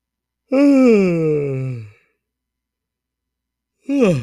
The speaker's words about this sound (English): That was the most convenient yawn ever. Yes, that was real. Talking about the Broncos just made me yawn.